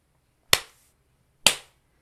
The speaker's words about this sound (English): So slap it a few times and now feel how much chi is in your hand. Added benefit, now feel the hand that slapped.